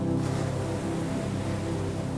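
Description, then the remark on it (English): A steady wash of sparkling ocean water surrounding on all sides fills the whole stretch, a continuous surf-like rush with a low humming drone underneath, no voices present. “Sparkling ocean water surrounds you on all sides and in front of you.”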